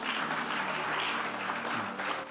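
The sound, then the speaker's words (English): An audience claps steadily for singers, a dense wash of many hands that stays loud and even throughout, with no pauses and no voices standing out above it. “Let's clap for them.”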